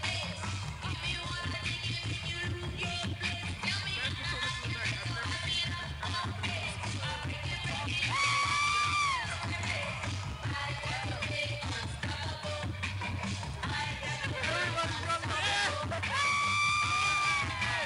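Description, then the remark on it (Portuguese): A large festival crowd, with people joining in from across the festival, yells and cheers continuously, with shrill whoops and screams rising above a dense, steady roar and a low rumbling undertone throughout. “Agora o pessoal tá enlouquecido, né, com o movimento.”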